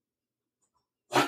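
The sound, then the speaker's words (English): A single sudden, loud sneeze bursts out after a stretch of silence, sharp and breathy, cut off right at the end. “Bless you.”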